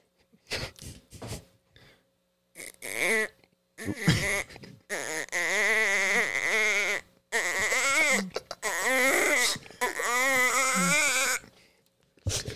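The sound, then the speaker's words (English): A voice imitates a duck call: a few short nasal squawks, then several longer, wavering bursts whose pitch wobbles up and down, fairly loud, with brief pauses between them. “I used to do that, but for like I would call it my duck call.”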